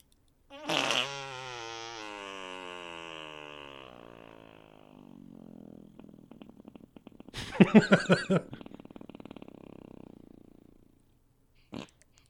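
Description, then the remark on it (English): A loud, drawn-out two-handed hand fart noise, squeaky and slowly sagging in pitch, followed by a rougher sputtering burst and one brief final pop, with no talking. “Okay, I got a tails, so I'm going to provide a toot. All right, let's go with a two-hander.”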